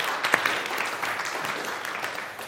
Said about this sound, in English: But thank you for that, and thanks so much to our amazing team who stepped in for leading worship and for preaching and supporting. Can we just give everyone a round of applause and say thank you?